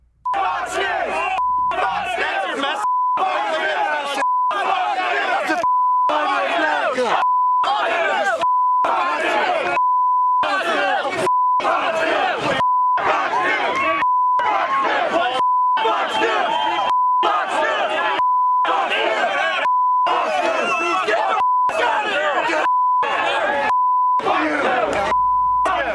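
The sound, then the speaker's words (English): A loud, agitated mob swarming a TV news outlet, in a clip from about 2008, shouts and chants nonstop, saying no borders, while steady censor bleeps cut in every second and a half or so, a piercing tone repeatedly slicing through the angry voices for the whole stretch. “Here's a clip from 10 years ago. I think it was 2008, of a mob swarming Fox News.”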